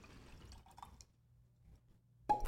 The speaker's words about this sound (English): I'm going to rinse out my glass. Mm-hmm. I'm going to rinse out my glass on this.